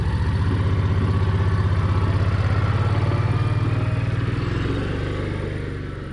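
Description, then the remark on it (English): A small garden cart engine, used around a farm, starts and chugs steadily with a low, rapid putter and rattly clatter as it carries people from the tomato field back to the farmhouse, holding an even idle before easing off slightly at the end. No voices. “starts up the little garden cart she uses round the farm to take us from the tomato field back to the farmhouse.”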